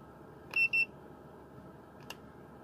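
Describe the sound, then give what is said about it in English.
An electronic device gives two quick, high-pitched beeps in close succession, clear, followed a moment later by a soft click over a low steady background hum. “Beep beep. Now he's beep beep.”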